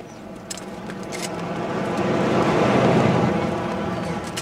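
A car drives past, its broad rushing noise swelling to a peak midway before easing off as it moves away, with a few faint clicks early on.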